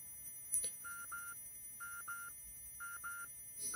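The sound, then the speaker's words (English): A faint, steady high-pitched ringing tone like tinnitus, in a short film's soundtrack after party scenes, hangs throughout while brighter pairs of electronic beeps sound three times over it. No one speaks. “If you listen closely, you can hear a soft ringing sound.”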